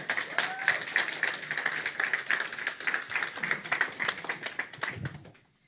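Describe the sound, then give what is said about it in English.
A crowd applauds steadily with dense, overlapping claps for a woman introduced as a sister in Christ, holding at a fairly loud level for about five seconds before quickly tapering off. A voice briefly murmurs beneath the clapping. “Ladies and gentlemen, let's give a round of applause to our sister in Christ”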